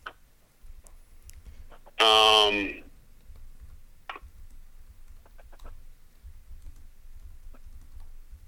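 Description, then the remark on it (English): Soft, irregular clicks of typing on a keyboard, entering another person's answer, run throughout, with a brief loud electronic buzzing tone cutting in early and a low muffled rumble underneath. “I'm typing yours in right now so that he has it.”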